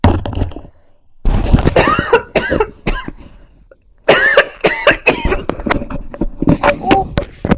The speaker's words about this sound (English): Oh, I coughed the mic thing off. I'm so sorry,